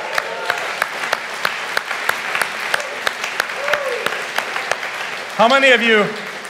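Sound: audience applause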